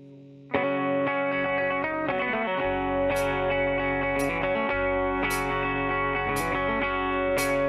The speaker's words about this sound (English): So this one's going to sound a little more bluegrassy, but it's still got that country rock and roll sound to it. It's going to be on album number 2.